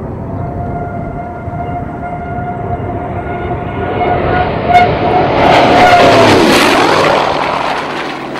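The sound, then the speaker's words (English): An F4U Corsair fighter plane, nicknamed Whistling Death, dive-bombing: a steady high whistling tone rides over a swelling engine roar, growing louder until the pitch sweeps sharply downward as the plane passes. No voices. “So named for the unforgettable sound she made while dive bombing.”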